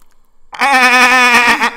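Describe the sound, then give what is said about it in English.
A single loud goat bleat with a wavering, nasal tone, from a goat in a studio, starts after a brief moment of quiet and holds for about a second. Nobody talks over it. “Oh, goat just walked into the studio.”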